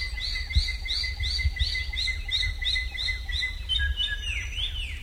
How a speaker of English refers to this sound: The drongo's sisisia call often comes just before troops of monkeys emerge from the forest to steal corn.